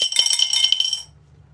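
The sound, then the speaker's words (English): Dice, including a D8, clatter and tumble across a hard surface in a quick burst of bright, overlapping clicks that lasts about a second, then stops abruptly with no voices. “I see what you mean about these dice.”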